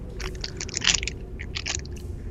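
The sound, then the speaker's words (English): Crisp crunching of nuts being chewed, a rapid series of sharp crackly bites with brief pauses, over a low background hum. “She's got nuts in her pocket as well.”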